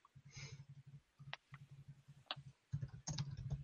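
Rapid typing on a computer keyboard, a steady clatter of key presses with a couple of brief pauses, getting a little louder and busier toward the end, as someone types a question into Ask Jeeves.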